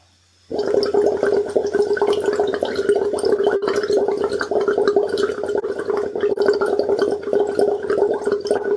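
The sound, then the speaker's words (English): A steady, continuous burble of air, with no voicing, blown hard through a straw into water to keep a steady stream of quite large bubbles. It bubbles loudly and evenly for several seconds after a brief quiet start, with no voices. “an important thing to remind people here is we're not using voice, we're just blowing. It's just air. So the aim is to keep a steady stream of bubbles?”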